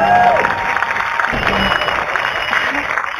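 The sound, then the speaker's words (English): An audience applauds to welcome an author guest, in a steady, dense wash of clapping that stays loud for about three seconds, with a few faint cheers mixed in. “Anyhow, we will welcome him to talk with us with a wonderful round of applause.”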